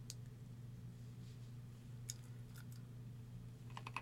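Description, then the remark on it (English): Faint, scattered clicks on a computer keyboard, a few isolated taps and then a quick cluster near the end, over a steady low electrical hum with no one speaking. “Keyboard.”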